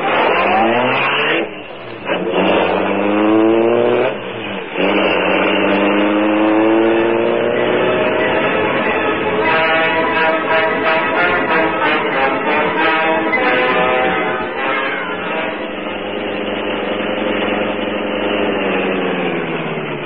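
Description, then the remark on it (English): A car engine revs hard, pitch climbing through a couple of quick gear shifts, then holds a steady roar as the vehicle drives off, with no voices. “You take the car onto the rear.”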